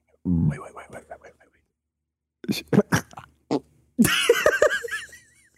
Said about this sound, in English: I got a burp.